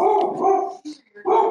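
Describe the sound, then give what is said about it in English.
A beagle barks loudly: a long, drawn-out bay, a brief pause with a small yelp, then another strong bark. No one speaks. “That's a beagle.”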